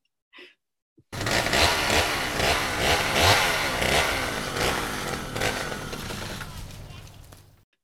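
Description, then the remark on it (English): A chainsaw sound effect: the chainsaw roars to life after a short breathy sound and revs loudly for several seconds, its engine pitch rising and falling in surges before trailing off. No one talks over it. “How many chainsaws out of 10 before relationships are destroyed today?”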